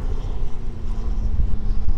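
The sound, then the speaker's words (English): Strong wind buffets the microphone in a continuous, loud low rumble with uneven gusty surges and a faint steady hum underneath; no one speaks. “Man, it is windy. Hang on, just let this wind kind of calm down for a second.”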